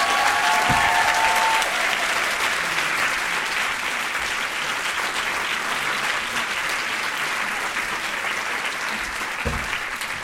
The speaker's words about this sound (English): they are receiving the Voices of Change Award tonight, but they are here with us. So can we give her a round of applause, please?